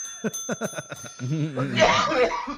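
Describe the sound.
A small bell rings with a bright, sustained metallic tone, mixed with bursts of chuckling and voiced sounds, followed by a louder, noisy rush of sound near the end.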